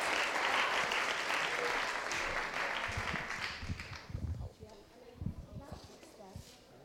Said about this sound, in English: Should we clap her? Because it's quite nerve-wracking, actually.